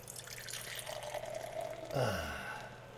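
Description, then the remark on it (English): Dark beer pours into a glass, a steady liquid splash and trickle with a gurgling rise near the end as it fills. No one speaks. “And the pour?”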